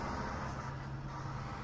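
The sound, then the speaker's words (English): A heavy vehicle that had been stopped in front of an office releases its brakes and pulls away, a steady low engine rumble with broad hissing road noise, continuous throughout with no voices. “Oh, no, he's now taking his brakes off, and he's starting up again.”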